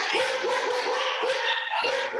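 dog barking

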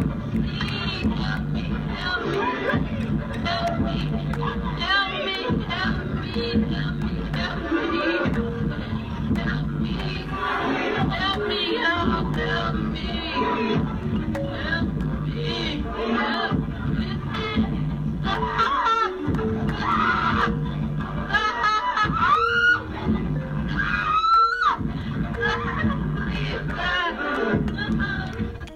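woman screaming

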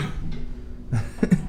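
person coughing

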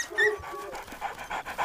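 dog panting

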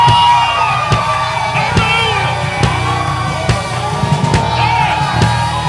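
audience shouting and cheering

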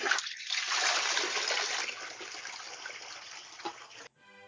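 toilet flushing

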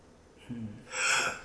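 sneeze

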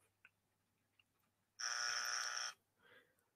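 buzzer sound effect

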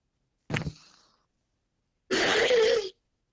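person blowing their nose

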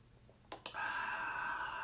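sipping coffee

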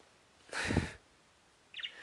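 pet bird chirping

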